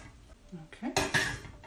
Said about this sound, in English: Yeah, they've gone softer and they've gone smaller in size. Brilliant. Okay. I'll turn that off. I'm just going to drain them and then add them to the cold water. Okay. Yep, they're in.